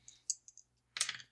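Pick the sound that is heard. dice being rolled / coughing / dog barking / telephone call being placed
dice being rolled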